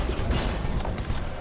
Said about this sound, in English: Scan complete. Opening the door.